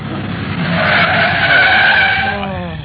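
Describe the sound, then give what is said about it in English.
A taxi skids to a stop on arriving at its destination, its tires squealing loudly and steadily for about three seconds over a rumbling engine, then trailing off as it halts. “My name may be Speed, but I don't like it this fast. Oh, driver, slow down.”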